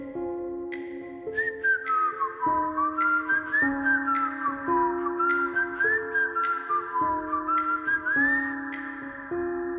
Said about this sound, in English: It was an old-timey whistle, like a... It took me a second. It was like, am I still dreaming? You know, am I really hearing this? I sit up in bed. I look around and I'm definitely awake and I definitely can hear somebody whistling a song.